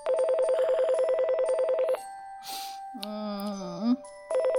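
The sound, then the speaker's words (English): A telephone rings with a rapid, warbling electronic trill, breaks off for a brief rustle and a sliding tone, then starts ringing again, loudly. “Brr. Brr. Get the phone.”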